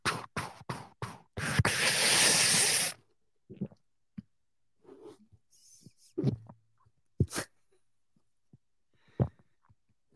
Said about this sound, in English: What do you think of that audio, huh? I was pushed the mic up against my throat and swallowed.